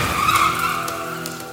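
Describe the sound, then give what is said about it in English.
A loud, sustained screech of car tires skidding in a crash test of a RAV4, a steady harmonic squeal that holds for the whole moment with a rumbling undertone and no voices. “See what seatbelt can help you to do. Another car. That's right. RAV4.”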